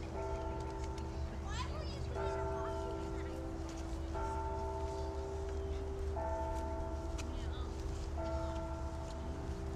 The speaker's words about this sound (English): Those were the bells in Arlington Cemetery.